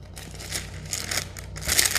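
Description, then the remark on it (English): Paper crinkling in irregular bursts of crisp, rustling crackles, growing louder and denser toward the end, over a faint low hum. “There we go, more crinkly paper.”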